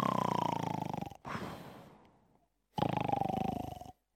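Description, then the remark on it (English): A voice imitates Elisha snoring in bed: two long, buzzy rasping inhales, each followed by a softer, airy exhale that trails off, with a brief pause between them. “Elisha's probably in bed now snoring.”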